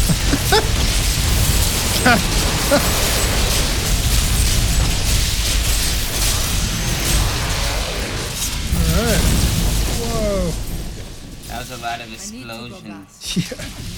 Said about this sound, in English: Explosion.